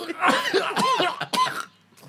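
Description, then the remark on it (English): A loud fit of harsh coughing from a person who has had a cough for two weeks, four or five raspy bursts in quick succession, ending with a short pause and a faint breath. “Yeah, I've had a cough for 2 weeks.”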